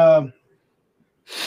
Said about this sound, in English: Excuse me, I got to yawn for a minute.